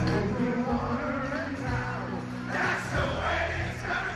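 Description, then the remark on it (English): A huge stadium crowd of about 10,000 people sings every word in unison, a dense, steady roar of thousands of voices with sustained melodic tones, loud and continuous throughout. “That is what 10,000 people singing every word.”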